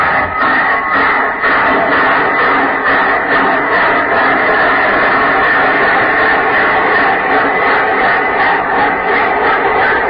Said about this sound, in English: What kind of room is this? We're in a compartment here. On a train? Yes, dear.